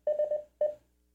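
Telephone dialing tones from an Alexa smart speaker: a quick run of four steady electronic beeps, a short pause, then one more beep, with no voices.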